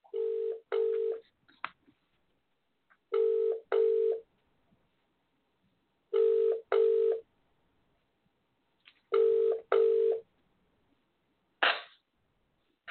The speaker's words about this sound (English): So I'm going to call her on WhatsApp. Hold on. And I'm going to do a trick. So you can hear the phone sounding, right?